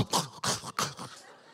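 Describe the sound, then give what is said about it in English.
A voice imitates a sleeping man's loud, gargling snore: three quick rasping, throaty bursts in a row, strong, trailing off into a fading rattle. “He did the whole loud gargle and just stayed.”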